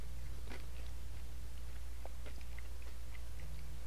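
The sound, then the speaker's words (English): Crunchy biting and chewing of the crust of a Dave Portnoy pizza, with several crisp, irregular crackles over a few seconds against a low steady hum, no talking. “Crust is crunchy. Mm-hmm. You know you heard that crunch.”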